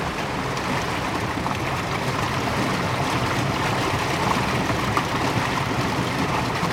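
A steady, continuous rush of river water flowing over stones, fairly loud, with no breaks or changes throughout and no voices.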